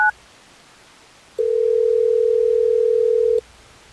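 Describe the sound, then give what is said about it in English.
A brief two-tone telephone beep, a short silence, then a single steady phone ring tone lasting about two seconds before cutting off, as radio station Hot 101.5 places a call to a listener. No one speaks. “Well, let's try to get me on the phone.”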